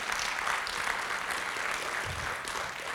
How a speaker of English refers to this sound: Amen. Come on, give him a good round of applause this morning.